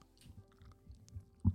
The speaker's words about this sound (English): Why are you chewing like... He's chewing plastic. Yeah, adhesive.